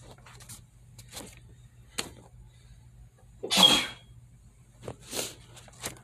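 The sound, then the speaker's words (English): A single sharp sneeze bursts out midway, the loudest moment, with a few softer breathy rustles and clicks before and after it and a low steady hum underneath. “Bless you.”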